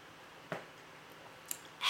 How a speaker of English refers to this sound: Just took a sip.